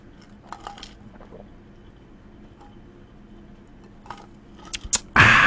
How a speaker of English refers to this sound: So let's see, tonight on Friday, let me get a sip here, my throat's a little dry.